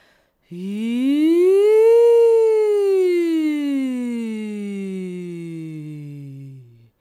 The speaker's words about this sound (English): Maybe an E sound with a really relaxed jaw.